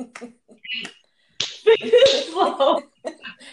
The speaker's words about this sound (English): Slow clap.